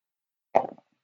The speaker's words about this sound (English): So you're going to roll 2d6 plus cool to do that, to see if it works.